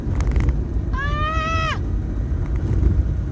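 A shrill, tonal squeal of car brakes lasting under a second, holding a steady pitch before sliding down as it stops, over a constant low rumble of road noise.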